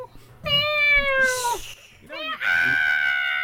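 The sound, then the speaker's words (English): A cat meows twice: a long, loud, drawn-out cry that slides downward, then after a brief pause a second insistent, sustained meow. “There's a cat.”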